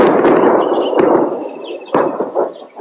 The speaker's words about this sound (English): 7:30 this morning and half an hour before ceasefire time. Israeli guns still firing as they have been all night. 7:45 and we watch Israeli shells falling on Lebanese villages.